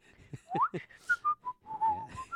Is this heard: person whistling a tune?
yes